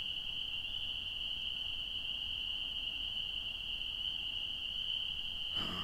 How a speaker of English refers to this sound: these are the spring peepers. And these are the males calling to the females to try to impress them.